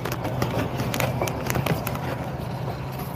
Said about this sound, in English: Yeah, oh, here goes the trolley again. Sorry, guys.